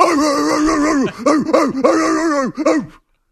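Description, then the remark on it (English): A man imitates a dog, starting with a drawn-out, whining howl and then letting out a quick run of about five loud, yelping barks, alone. “Let me dress up like a dog and bark.”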